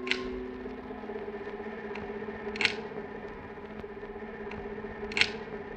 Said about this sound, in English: I want to think more about this sound, the clicking of the light's mechanism, so I've looped this section of the broadcast.